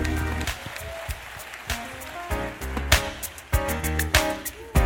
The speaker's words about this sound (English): Scripture says in Psalms 47, clap your hands, all ye people. Shout unto God with a voice of triumph. So can we do that right now? Come on, clap your hands and make some noise.